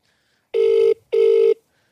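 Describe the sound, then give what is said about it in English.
Two steady electronic ringback tones of an outgoing phone call, each lasting about 0.4 seconds with a short gap between, clear and fairly loud with no talking. “We'll give him a call, see if he's here on the phone.”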